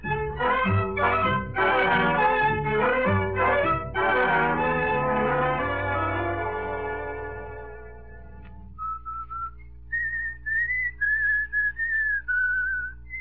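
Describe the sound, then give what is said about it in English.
Instrumental music plays and fades away, then someone whistles a tune alone in clear, bright phrases with brief pauses between notes. “do you have to whistle that tune all the time?”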